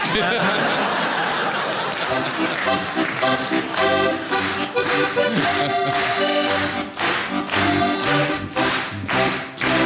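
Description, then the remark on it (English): Scattered audience clapping, uneven and patchy rather than a full ovation, with individual claps standing out against a murmur of crowd noise and a bit of laughter. “I have to say, that's like being clapped by a firing squad.”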